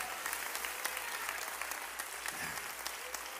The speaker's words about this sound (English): Somebody clap your hands in this house. Give God praise.